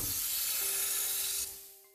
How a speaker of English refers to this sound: Mag clamps engaged. Equalizing air pressure.